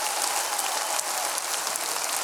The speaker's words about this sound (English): Everybody clap your hands like you know you need to wash them.